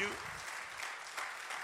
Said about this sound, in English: Come on, good job. Come on, give him a great clap offering.